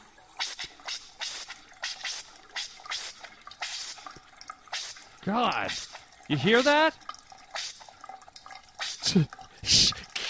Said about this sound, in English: It's crazy, right? So that's the air. When they turn off your water, all your water pressure goes away, and your pipes, your water pipes, fill up with air.